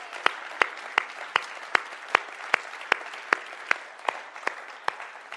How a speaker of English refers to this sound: Can anybody, should we just give God a clap for what he's doing?